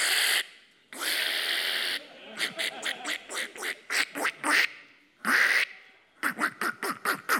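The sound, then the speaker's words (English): A handheld duck call blown loudly to call ducks for hunting: long raspy drawn-out blasts alternating with rapid rhythmic strings of sharp quacks, repeated several times with no talking. “I'm just calling the duck so I can kill him.”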